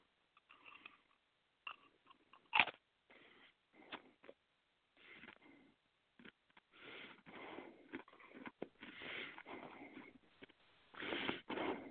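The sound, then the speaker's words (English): Chewing and biting of food, with irregular wet, crunchy bursts and short pauses, mixed with sniffs and breathing. No one speaks. “Remember, chew and swallow.”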